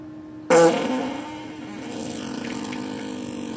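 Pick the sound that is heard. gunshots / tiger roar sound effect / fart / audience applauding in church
fart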